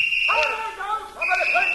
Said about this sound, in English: Hey, listen. Police whistles.